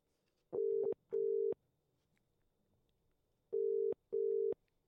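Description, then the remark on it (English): A phone ringing tone in a steady double-burst pattern, two short tones, a pause, then two more, clear and alone over a faint line hiss. “Daisy has replied to my message letting her know that she needs to answer the phone call. So we'll try giving her a buzz.”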